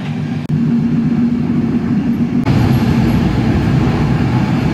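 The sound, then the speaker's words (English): A loud, steady rumble and roar from inside a moving passenger train running through a really long tunnel, with dense low-frequency noise and two brief dips in the din. “Been in this tunnel for ages now. It's a really long tunnel.”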